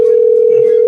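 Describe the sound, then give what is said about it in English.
A steady electronic ringback tone from a phone line, loud, holds one unbroken pitch for the whole moment as an outgoing call rings. “It's ringing. No, it's ringing.”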